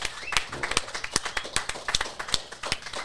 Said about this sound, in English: Hey, let's just give a round of applause for everybody that came through fucking... Straight up.